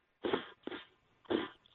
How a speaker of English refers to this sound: I love hearing you sniffing. That's awesome.